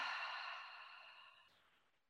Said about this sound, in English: And we'll start with what we'll call a cleansing breath by taking a deep breath in through the nose, letting the lips part and breathing out through the mouth.